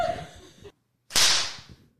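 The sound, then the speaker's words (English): A sharp, loud whip crack bursts out after a brief silence, its bright snap trailing off into a decaying swish; faint rustling and low noise come before it. “I did not expect that crack of that whip.”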